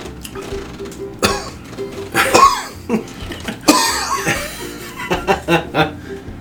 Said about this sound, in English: Cough because I held my breath too long.